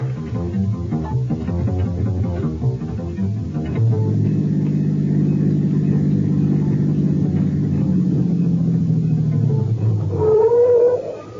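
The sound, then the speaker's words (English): A car engine hums with a steady low drone, then its pitch sinks as the car slows to a halt at a rest area, ending with a brief higher whine. “Hey, why are we stopping? Can't drive with my eyes closed, and they're closing.”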